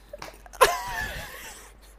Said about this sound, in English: You sneeze or something?